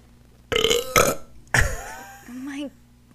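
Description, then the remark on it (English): A loud burp right into the microphone, broken into a few rough bursts and ending in a drawn-out, croaky tail with a rising pitch. “My I haven't burped into the microphone in a long time.”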